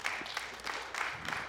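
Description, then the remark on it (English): An audience claps together in praise of God during a worship gathering, a dense, steady wash of hand claps, fairly loud and continuous with slight swells, no voices standing out. “Come on, go ahead and give him that hand clap we always do.”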